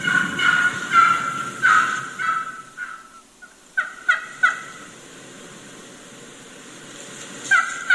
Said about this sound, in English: Just play through so you can hear a couple of different hens doing that same type of yelping.